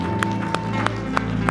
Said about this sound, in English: Come on and give Him your best hand clap of praise in this room.